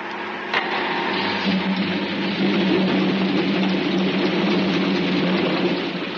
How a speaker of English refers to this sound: Chief, close the inner hatch of the airlock and stand by the engines. Aye, aye, sir. Start the compressors.